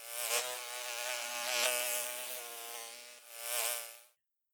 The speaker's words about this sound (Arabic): أرى نحلة تقترب من النافذة، أسمع طنينها عالياً.